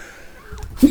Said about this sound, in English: Pardon me, I had to sneeze.